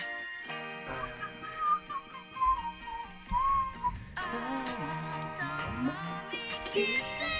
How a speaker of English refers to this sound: I love the whistle part. Hold on. Put it louder.